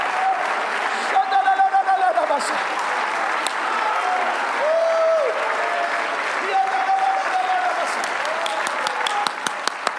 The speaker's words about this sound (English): Come on, clapping is good for your human passions. Come on.